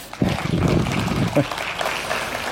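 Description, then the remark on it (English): A church audience claps steadily for a few seconds for the worship team, a dense wash of applause, with a voice briefly audible underneath near the start. “Thanks, worship team. You can clap for that.”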